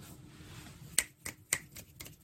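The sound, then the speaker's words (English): Crisp finger snaps, several of them in an uneven rhythm, sharp, over a quiet low background hum with no talking, made in appreciation after a poem is read aloud. “Why are you snapping your fingers?”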